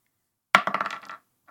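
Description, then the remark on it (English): A die hits a hard tabletop with a sharp clack, then tumbles in a quick run of rattling clicks that fade out within about half a second, followed by one faint final tick. The die lands at an angle. “That landed on an angle. I can't tell what it is.”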